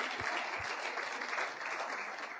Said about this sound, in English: Oh, somebody wanted to clap for the woman there. Go ahead and clap.